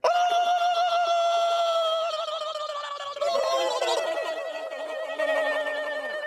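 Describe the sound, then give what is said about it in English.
A loud, piercing human victory screech celebrating the Giants' first win of the season, held for several seconds with a wavering, slightly falling pitch and brief breaks, with no talking. “Victory screech!”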